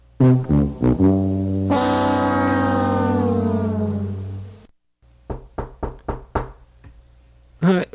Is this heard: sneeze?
no